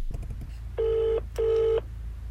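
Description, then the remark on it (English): A few soft clicks, then a phone call ringing out from the Lidl car park: a steady, mid-pitched double burst of ringback tone, two pulses with a brief gap, over a low constant hum. “So I'll go up to the Lidl car park to give her a call, and fingers crossed she answers.”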